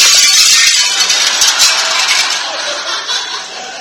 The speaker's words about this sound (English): This football, which has just come crashing through the $5,000 President McKinley French windows